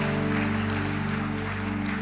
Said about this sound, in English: Put your hands together again.